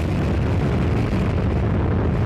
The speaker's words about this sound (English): And we have liftoff of TDRS M on the Atlas V rocket from Space Launch Complex 41.